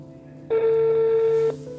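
A telephone ringing tone sounds once on the line, a steady electronic buzz-tone lasting about a second, close and clear over a faint background hum, with no one speaking.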